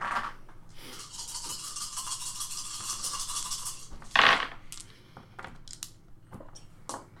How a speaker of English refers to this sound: So 14, I guess? Yep. Okay, yeah, 14. So roll 14 dice.